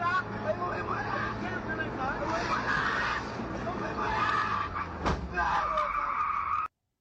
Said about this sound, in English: Did you guys hear that fucking thud before the screech of the tires?